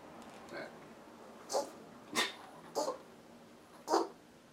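A small dog lets out a faint whimper followed by four short, sharp yips and barks, spaced unevenly over a few seconds, moderately loud with no talking.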